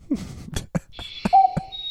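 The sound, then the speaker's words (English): A brown wood owl gives a short, low hoot, followed by a brief higher toot, over a steady thin high-pitched drone and a few sharp clicks. No one speaks. “Now here's a brown wood owl.”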